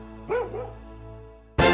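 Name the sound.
dog barking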